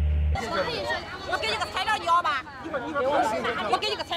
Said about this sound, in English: As you can see, Jinan's never seen anything like it. There are huge crowds here watching the media, watching the trial, and everybody who has any sort of grievance, any sort of complaint against the local government or the national government is here